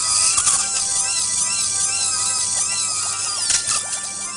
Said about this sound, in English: But no, I was calm. Almost absurdly calm as the doctor drilled and poked and prodded.